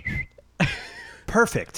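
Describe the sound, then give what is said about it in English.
A person imitates a wooden train whistle with their voice: a thin whistled note, then a longer breathy, chord-like hoot, followed by a couple of quick wavering whoops, all fairly loud. “We need to buy one of those wooden train whistles.”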